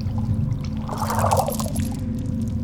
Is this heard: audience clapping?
no